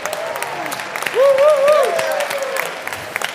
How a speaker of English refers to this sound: So, firstly, a round of applause, woo! Please.